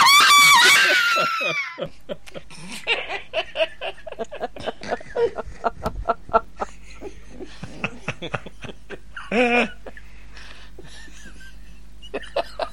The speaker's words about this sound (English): That was a scream. That was a fantastic scream.